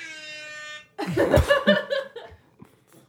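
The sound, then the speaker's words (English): A steady, buzzy start-timer horn blares for just under a second and cuts off, followed right away by a burst of loud laughter that tapers into chuckles. “Star timer freaked her out.”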